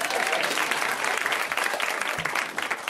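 An audience claps steadily for a few seconds, a dense, loud wash of overlapping hand claps with no pauses or talking.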